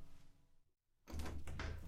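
A front door is opened for an arriving guest: faint shuffling, a brief hush, then a sudden wash of louder noise and low rumble as the door swings open. No one speaks.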